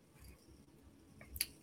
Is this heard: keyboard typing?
yes